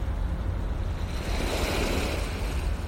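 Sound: ocean waves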